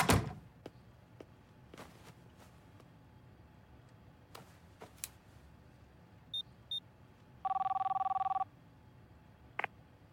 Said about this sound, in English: So, in the back, Uraraka gets a phone call from her dad after the fight, and I'll splicey it in because this whole scene is just really, really heartwarming.